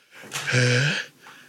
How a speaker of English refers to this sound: Oh boy, guys, I'm going to sneeze. I'm going to have a nice fall sneeze. Here it comes. We'll bleep it. The first one of the season.